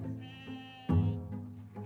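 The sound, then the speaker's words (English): Sheep bleat in a wavering, nasal chorus, with one louder bleat rising out of the group partway through before quieter calls continue. “Grazing sheep on land stolen from Darug people around Sydney was the growth industry for colonists.”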